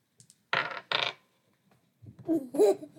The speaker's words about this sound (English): So this one, when you roll it, you look at, this one you look at the number on the bottom. So that is a 2. That's a D4. It has 4 sides. If we roll 2 dice...